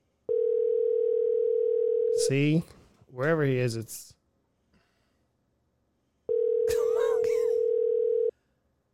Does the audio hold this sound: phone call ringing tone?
yes